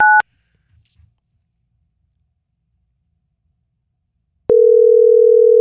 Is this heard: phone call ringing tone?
yes